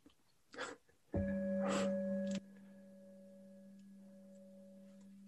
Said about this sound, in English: To ring the bell, you know, just to make it official.